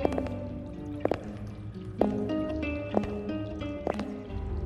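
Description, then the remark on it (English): Water drips at a steady pace, about once a second, in a natural underground cavern. Each drop lands with a bright, ringing plink that hangs in the air over a low, hollow background rumble. “It must have been a few degrees warmer down here than on the surface, for they could hear the sounds of dripping water.”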